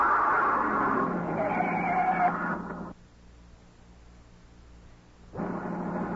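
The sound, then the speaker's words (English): A car skids and roars loudly for about three seconds after a front tire blows out and it is driven off the road down an embankment, then cuts off abruptly into a low rumble before the harsh vehicle noise surges back near the end. “It wasn't a shot. A front tire had blown out. He drove the car off the road down an embankment where we couldn't be seen.”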